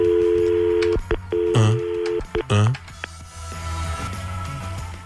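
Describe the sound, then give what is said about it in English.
A steady telephone dial tone hums, then breaks into a few short, clipped keypad tones as 411 is punched in to call Bell directory assistance, followed by a quieter line hiss and faint clicks. “Can you remember the last time you used 411? No. Want to use it right now? Yes. Let's try it.”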